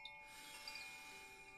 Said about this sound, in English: And as the sound of the chimes fade, continue your awareness on your breath.